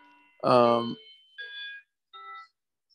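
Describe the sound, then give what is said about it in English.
A clock rings in three tonal bursts: a loud, rich first chime followed by two shorter, thinner tones that fade in strength, with quiet gaps between them. “I'm going to wait for the clock to stop ringing here so you can hear me better.”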